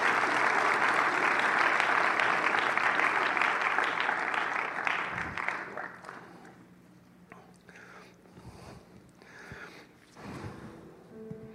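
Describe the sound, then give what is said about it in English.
A crowd bursts into loud, sustained applause for Jesus Christ during a sermon, lasting several seconds, then thins out into scattered claps and fades to quieter background noise. “If you believe that, give Jesus Christ a big round of applause right now”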